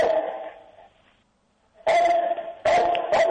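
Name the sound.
dog barking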